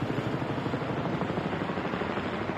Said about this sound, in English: Oh, I hear a helicopter. That is amazing. Where's it coming from? Must be right above us.